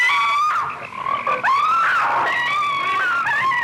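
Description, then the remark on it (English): A loud, dense chorus of frogs croaking in a 1972 film trailer, with many overlapping trilling calls that rise and fall continuously for a few seconds, unbroken, with no voices. “Frogs lay hundreds of millions of eggs each year. What if they all hatched?”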